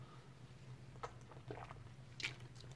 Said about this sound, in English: Excuse me, I have to drink some water.